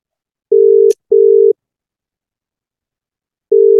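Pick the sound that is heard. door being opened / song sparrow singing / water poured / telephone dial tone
telephone dial tone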